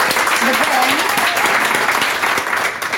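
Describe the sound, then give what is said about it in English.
An audience at a talk claps to greet a guest speaker in a steady, dense round of applause that stays loud throughout, with a few faint voices and a whistle-like tone rising above the clapping. “Please help us greet him here with a big round of applause.”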